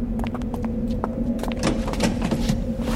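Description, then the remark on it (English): Scattered clunks and rustling shuffles over a steady low hum as the passenger door of an old Ford Mustang parked in the road opens and one person gets into the front while another crawls into the back, with no talking. “I opened the passenger door and got in. The elf crawled into the back.”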